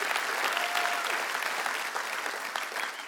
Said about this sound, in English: One more round of applause for our servicemen.